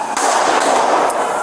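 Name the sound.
gunfire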